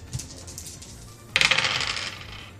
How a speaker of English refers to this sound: Hang on, I have to roll a 3 for that.